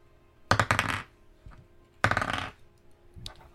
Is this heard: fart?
no